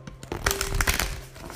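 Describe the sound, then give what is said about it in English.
A deck of cards being shuffled to draw messages, a quick run of dry, papery flutters and snaps that swells in the middle and trails off, with no one talking. “Messages, I'm gonna shuffle.”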